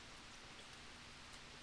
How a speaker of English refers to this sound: I'm sitting on my front porch right now, and can you hear the rain coming down?